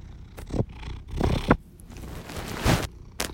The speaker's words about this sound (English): Well, the very, very immediate favorite thing is this giant cat that just jumped into my lap, and you can probably hear purring.